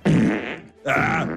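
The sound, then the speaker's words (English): Two loud fart sounds in quick succession, the first a buzzy sputter and the second a higher, more tonal squeak, separated by a short pause. “I'm giving you some holy water out of my ass.”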